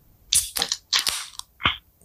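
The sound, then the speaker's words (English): A can of lemon drop beer cracks open in a run of sharp, crunchy pops and bright fizzing hisses, five or so short bursts over two seconds, with no talking. “Let's get this crack going.”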